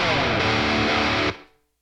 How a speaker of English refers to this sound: you can actually hear like a very short tail at the end. That's the room sound, and it is a 200 millisecond reverb.